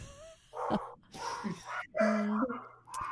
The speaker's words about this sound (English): Are your dogs like freaking out? I don't understand why. I'm about ready to lose my shit, though, because they're driving me crazy.